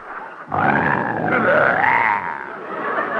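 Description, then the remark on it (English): A lion roars loudly, a single rough, drawn-out roar that swells and wavers in pitch for nearly three seconds, with no talking over it. “you're not afraid of that lion, are you? Of course not. He roars again, I'll go in that cage and slap his silly face.”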